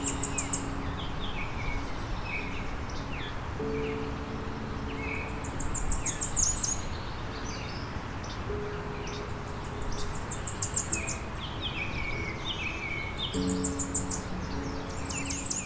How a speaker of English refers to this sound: They have a high-pitched warble that is short and often decelerates and decreases in pitch. In southern Ontario, we only get a chance to see these birds during migration, as their breeding range is much further north in the boreal forests.